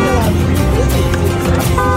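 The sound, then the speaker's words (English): Car horns honk amid loud, dense city traffic in Tunis, Tunisia, as one of the city's yellow taxi cabs is hailed for a ride into the center, with a steady low engine rumble and busy street noise filling the background. “But when news is afoot in Tunis, I hail one of the city's yellow cabs for a ride into the center.”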